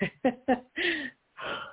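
throat clearing

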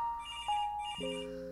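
phone ringing

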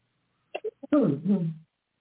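cough

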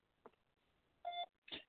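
telephone dialing tones

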